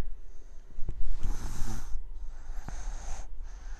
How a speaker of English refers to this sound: That's my child snoring. If we did not have some kind of toddler interruption, which is fine.